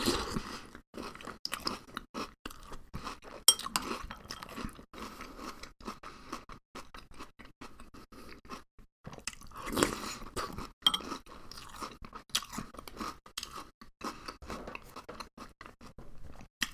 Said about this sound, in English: So maybe like a podcast where I eat food isn't the smartest idea, unless you're into that kind of thing. Like, you know, you enjoy the sounds of people slurping cereal into their big dumb mouths. If so, then you just like hit the jackpot.